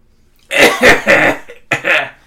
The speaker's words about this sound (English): That was my post-sing cough. You gotta warm up, you gotta warm down.